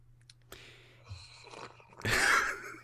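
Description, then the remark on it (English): A few soft clicks and rustles, then a big slurping bong hit: a loud, hissing inhale lasting about half a second before trailing off. “Big slurp. … was big rip about from the bong.”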